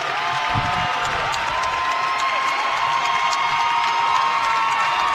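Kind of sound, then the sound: crowd, basketball crowd cheering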